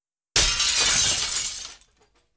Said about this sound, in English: He reached down, picked up a brick, and threw it right through one of the big glass doors. The door shattered loudly into a million pieces.